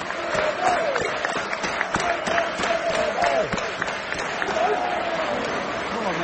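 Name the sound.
stadium crowd applause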